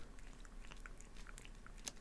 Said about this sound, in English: So the cat likes Pringles. It's official.